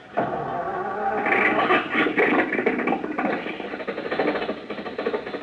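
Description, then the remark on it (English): Mr. Benny's car engine, started by Rochester in a garage after failing to catch, fires abruptly and keeps running with a steady, fairly loud mechanical rumble and a rapid rattling pulse, with no voices over it. “The motor's going.”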